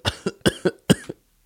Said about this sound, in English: Are you coughing a little?